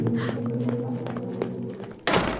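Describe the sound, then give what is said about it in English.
A steady, low droning hum fills the first two seconds, then doors are slammed shut with a sudden, heavy bang that cuts through loudly near the end. “I slammed the doors on the otherworldly thing inhabiting my father and ran down the stairs.”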